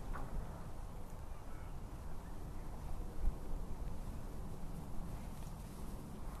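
A steady, low rumbling roar of the last of the rush hour traffic on the M40 motorway, continuous and even throughout with no breaks, a dull background wash with no talking.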